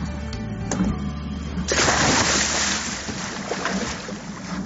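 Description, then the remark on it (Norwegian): A steady low hum gives way to a sudden loud splash as a person jumps into the sea at Andedammen on a warm day, followed by a couple of seconds of churning, rushing water. “Jeg skal bare gjemme sammen da, for det her plasket som kommer. Plask!”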